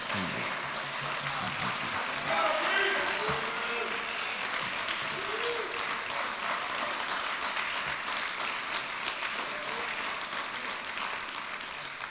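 Sustained applause from an audience, a dense steady wash of clapping lasting the whole twelve seconds, with faint voices and a brief cheer rising through it early on.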